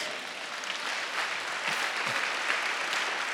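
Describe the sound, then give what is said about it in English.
An audience applauds for Jesus during a church sermon, a steady, dense wash of many hands clapping at once, holding an even loudness for a few seconds without any voices standing out. “Clap for Jesus.”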